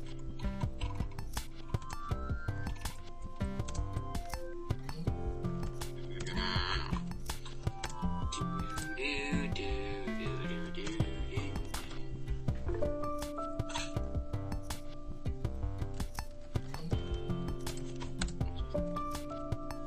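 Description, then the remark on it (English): Rapid, irregular clicking of keys on a computer keyboard as someone types in a chat runs throughout at moderate loudness, set against a steady tonal musical background. “What are you typing me?”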